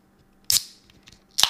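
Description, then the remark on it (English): Fizzing sizzle of a Bud Light Seltzer hard soda: two sharp, bright hissy bursts about a second apart, with faint crackling fizz trailing between them and no talking. “Nice little, like, sizzle.”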